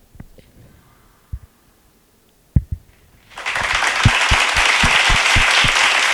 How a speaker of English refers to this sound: Okay. You know, we have a lot of people like next to us clapping. Yeah, they're like 20 of us. Yeah, 20 people.